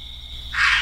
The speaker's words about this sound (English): There it was. I mean, it sounds like a deer. I was convinced. Like, I just knew that's what it was. It had a raspiness, like just a hint of it. I could hear. See how you could, but I could definitely say, oh, that's a doe.